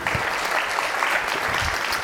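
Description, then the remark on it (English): A round of applause: many hands clapping in a dense, steady patter that holds at an even, fairly loud level for about two seconds without fading. “I just want to give that a round of applause.”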